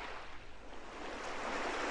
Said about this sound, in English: Is that. Are you playing Ocean Waves right now?